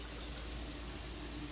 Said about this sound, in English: The sound of me taking a hot shower.